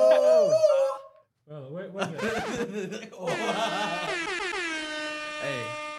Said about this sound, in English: I had to give myself an air horn.